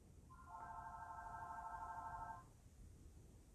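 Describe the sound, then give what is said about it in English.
A single sustained electronic telephone ring in the background, a steady buzzy two-second tone over low background rumble, fairly clear but not loud, with no voices. “Apologize for the ringing in the background.”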